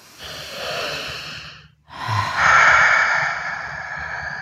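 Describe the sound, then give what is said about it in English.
A person takes a slow, deep breath in, pauses briefly, then lets out a long, airy exhale as a breathing exercise to ease distress, with no talking. “And while we're doing that, everyone who's listening can breathe with me right now.”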